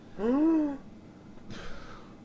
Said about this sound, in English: What are you gasping at?